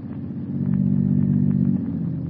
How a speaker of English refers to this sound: The unearthly silence is broken only by the purr of a motor car. Listen.